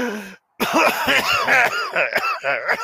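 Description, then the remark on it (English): A loud, harsh coughing fit after smoking a cigarette: a brief vocal sound, a short pause, then a rapid run of raspy, strained coughs that keep coming without a break. No one speaks. “Maybe wait a second before you add something that makes your breathing harder?”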